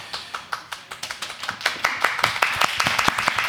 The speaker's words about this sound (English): Keep clapping, I have to turn my page.